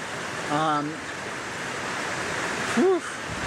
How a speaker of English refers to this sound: So here we are, our first waterfall. It's been a rough day, and this waterfall is intense.